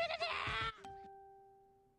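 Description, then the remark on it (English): A wobbly, bleat-like harmonic sound lasts under a second, then a single bright Facebook notification chime rings and slowly fades away. No one speaks. “One of those was a Facebook notification.”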